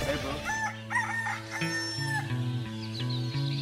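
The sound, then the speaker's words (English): A rooster crows loudly on a windy summer morning on Nantucket, its drawn-out call rising and falling over a steady, humming tonal background, with no talking. “Ah, the sun is shining, birds are tweeting, so are assholes.”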